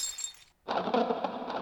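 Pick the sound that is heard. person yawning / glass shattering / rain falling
glass shattering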